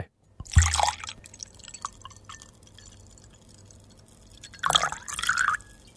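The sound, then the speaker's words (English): Liquid glugs out of a bottle in two short, splashy bursts separated by a quiet lull, with dripping and sloshing noises; no voices are heard. “It's come out of a bottle because you had to get it going and then it sloshed and stopped and started.”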